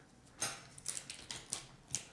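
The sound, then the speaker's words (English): Someone chewing shiitake mushroom vegan jerky: about six soft, crisp crunching bites in an uneven rhythm, fairly quiet, with no talking. “You hear that? I'm chewing it.”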